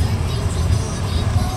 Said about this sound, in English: So we're in Mexico. I have my rental car. I'm just going to put the recorder on the dashboard and look up some directions.